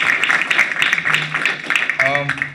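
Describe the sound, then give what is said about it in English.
A room full of people applauds the panelists with steady, dense clapping that fills the space, and a man's voice starts speaking over the applause near the end. “Okay, can we get a round of applause for the panelists?”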